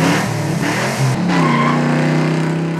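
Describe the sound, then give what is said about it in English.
A car engine roars loudly and continuously, its pitch climbing and shifting as it revs and accelerates, with a brief dip midway before surging again. “You know how when you're driving in a car, the car is going a certain speed?”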